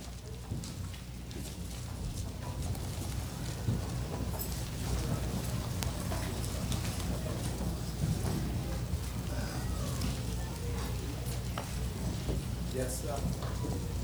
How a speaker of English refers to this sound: Still hear some pages turning.